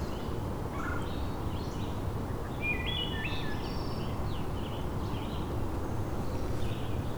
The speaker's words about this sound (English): And if you come in the early morning, quite a bit of birdsong.